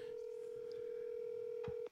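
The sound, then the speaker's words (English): A phone call ringing out as someone calls a man from their phone: a steady, unbroken electronic tone holds for nearly two seconds over faint background noise, with a brief soft bump near the end and no one talking. “We're going to call this guy until he fucking answers.”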